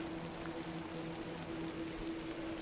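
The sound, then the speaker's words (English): Steady, dense hiss of heavy rain pouring down on a tilled field, a continuous wash of sound with no pauses and a faint low hum running beneath it. “Walk across a tilled field. The rain pours down.”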